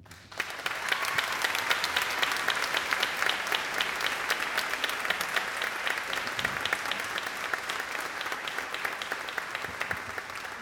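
Steady, sustained applause from an audience at a Seattle College event in a church, a dense wash of many hands clapping that stays loud and even for about ten seconds with no voices standing out.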